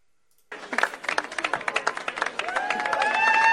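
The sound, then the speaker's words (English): A crowd claps and cheers, the noise swelling steadily louder, with scattered whoops and rising shouts joining the dense patter of hands toward the end. “The cheers pick up. The cheer, it gets louder.”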